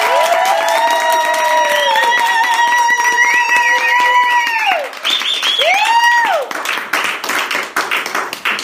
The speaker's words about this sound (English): Can we have a thunderous round of applause in the room?